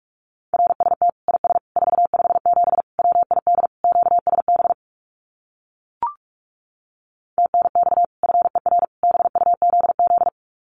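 Very fast Morse code at about 45 words per minute sending common amateur radio QSO phrases: a steady mid-pitched tone keyed in rapid dots and dashes, two long runs separated by a few seconds of silence broken by a single brief click.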